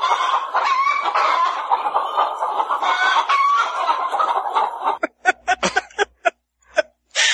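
A flock of chickens clucks and squawks in a busy, overlapping chorus, then the noise thins to a handful of sharp, separate clucks with short silences between them.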